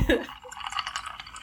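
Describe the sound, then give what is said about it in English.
A short pour of limoncello liqueur into a glass to finish a cocktail: a soft knock at the start, then a steady, trickling splash of liquid lasting just over a second. “I'm adding a liqueur limoncello, and I'm gonna add it on here.”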